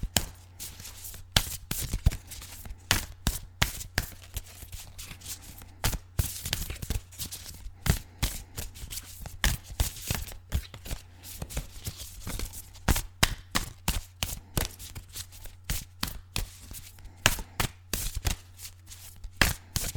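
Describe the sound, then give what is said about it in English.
Oracle cards being shuffled over and over, a steady run of quick, crisp riffling snaps and flutters, with no one talking and a faint low hum underneath. “So let's keep shuffling and see what else comes out for us today.”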